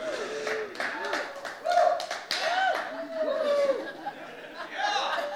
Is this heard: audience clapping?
yes